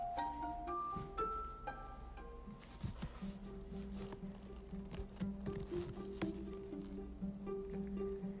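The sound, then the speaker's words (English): Hurried footsteps of startled partygoers running across a floor, mixed with scattered knocking thuds on a door, over a steady low humming drone. The sounds are moderately loud, with no voices. “Sound of startled partygoers running, knocking on door.”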